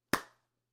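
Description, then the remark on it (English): One sharp hand clap rings out alone, its bright snap fading quickly into silence with a short echo. “Make sure you give me a clap before you go back.”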